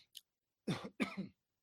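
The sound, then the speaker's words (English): Two raspy coughs, the second with a throaty, rattling clearing sound, preceded by a couple of faint small noises; loud, with no talking. “I do not have a cough button. I apologize for that.”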